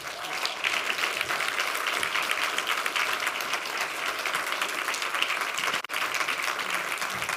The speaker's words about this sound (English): Hey, would you guys give your elder team up here a hand clap?